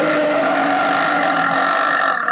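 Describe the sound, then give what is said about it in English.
A woman in a played video clip lets out one long, loud burp that drones steadily for a couple of seconds with a gravelly, buzzing tone, with no talking around it. “She's the burp champ. Air in my belly.”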